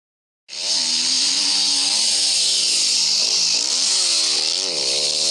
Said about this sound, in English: But because he was next to my leg, probably does sound a bit like a fart. I mean, it is a four-stroke.